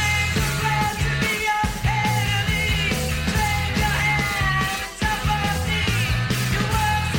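A post-punk song plays loud and steady, a throbbing stepwise bass line under jangling guitars while a voice shouts the melody rather than singing it cleanly.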